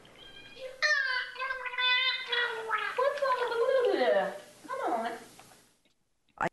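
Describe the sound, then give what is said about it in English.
A dolphin named Peter, recorded during a morning training lesson on August 18, makes buzzy, warbling sounds that mimic human speech, rising and falling in pitch across three loud, syllable-like bursts, then a brief pause and a sharp pop at the end. “She was speaking to the dolphins. Like, could you hear that?”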